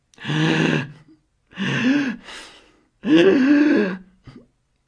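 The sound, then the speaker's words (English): A voice imitates a woman gasping for air and weeping: three loud, ragged sobbing breaths with wavering, strained voiced moans, separated by short pauses, with no talking. “I mean, she was gasping for air, weeping, if you know what I mean.”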